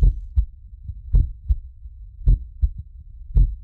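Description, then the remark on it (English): A recorded heartbeat captured from a person's body to gather information on their electrical activity: deep, muffled lub-dub thumps in steady pairs, a little over a second apart, low and booming with a soft rumbling hiss between beats. No voices. “So I go to the heart sound.”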